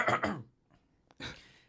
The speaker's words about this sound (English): I really think you should cough.